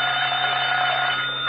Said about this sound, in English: There's a ringing in my ear. Would that be your voice or the telephone? Oh, that's the phone, Mr. Mayor. Pardon me.